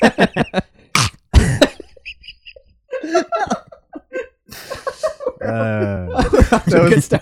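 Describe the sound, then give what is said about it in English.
Someone imitates a dog: a quick run of short, sharp bark-like yelps and gulping noises, then a drawn-out whining howl, with breathy laughter between bursts. “That was the best impression of a dog I think I've ever heard in my life.”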